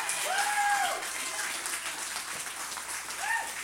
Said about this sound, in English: Stand to your feet in this house of God and give my God a hand clap of praise.